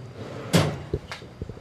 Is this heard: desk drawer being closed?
yes